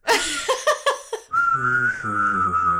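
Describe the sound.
A few quick bursts of giggling laughter give way to a steady, sustained whistle that holds one high pitch for about a second and a half, fairly loud.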